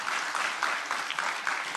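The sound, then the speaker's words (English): Steady crowd applause, a dense wash of many hands clapping at once with no pauses, loud and even throughout, with no voices standing out. A church audience welcomes guest speakers. “So would you give a great warm welcome”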